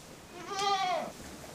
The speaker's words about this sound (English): So this is Raptor. She's a La Mancha goat. They're born without ears. And she's a wild woman. Friendliest to people of all the breeds and the most hostile to the other goats.